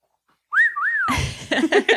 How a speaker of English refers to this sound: For those of you who haven't listened to MCU in Review, there's a great bit involving whistling at Torres' name, and you'll have to check it out.